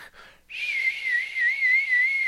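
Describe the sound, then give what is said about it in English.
A person whistles a long, steady, gently wavering tone, imitating the sound of wind. It follows a brief faint breathy start and stays fairly loud throughout, with no talking. “And then it's like 3 minutes of silence and wind whistling.”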